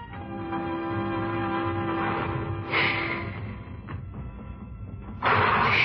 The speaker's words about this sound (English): The train started away without us. Somehow it seemed to run more smoothly, as though its wings were light instead of dark.